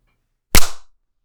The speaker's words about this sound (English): Okay. See? It worked. Yeah. We were both able to clap successfully.